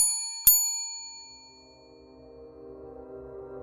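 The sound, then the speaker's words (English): A bright service bell on a hotel front desk, tapped by hand, dings sharply across a small lobby and its metallic ring fades over about a second, then a low, murky drone of background ambience rises underneath. “The toll of the desk bell rings across the small lobby and reverberates beyond the empty lines and walls”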